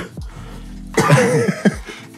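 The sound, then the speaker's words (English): A short coughing fit: a small cough, then a loud, harsh, raspy burst followed by another sharp cough, with no talking. “It's because, damn it, I can't hold back these coughs, man.”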